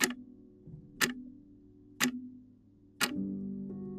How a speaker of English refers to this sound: The clock ticked steadily onwards.